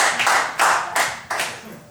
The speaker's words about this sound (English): What do you call it? …. A round of applause for ….